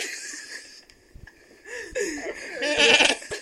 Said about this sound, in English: Oh my god! There's a sheep in the house!